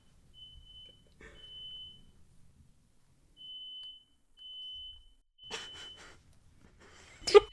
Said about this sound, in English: The smoke alarm is going off. Yeah, I heard hear that.